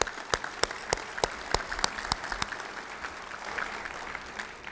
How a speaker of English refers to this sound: And let me add how excited I am for our new business excellence program. Let's give one more hand of applause for that.